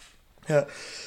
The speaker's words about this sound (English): There's a sneeze in here somewhere. In your nose? Yeah. It's making its way, and it's going,